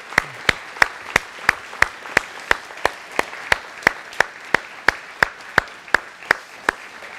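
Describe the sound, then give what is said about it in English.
A round of applause for people who have helped in the foster care system, settling into steady rhythmic clapping, about twenty sharp claps evenly spaced at a brisk beat over a constant soft wash of noise, with no voices. “if you've been involved in the foster care system at all and just helped in any way, would you just go ahead and stand real quick and let's give everybody who stands real quick, would you guys give them a round of applause and remain standing for us?”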